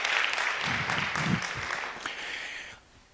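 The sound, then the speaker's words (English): A crowd claps steadily in dense, continuous applause for about three seconds, with a few scattered voices underneath, before it quickly fades out. “Give them all a big round of applause.”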